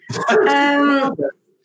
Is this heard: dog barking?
yes